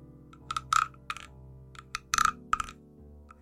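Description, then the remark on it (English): A little wooden frog rattle, its back rubbed with a wooden stick to imitate croaking, gives short, dry rasping bursts of clicks in irregular clusters, with brief pauses between strokes over a faint steady hum. “I have a little weird wooden frog that makes a rattling noise.”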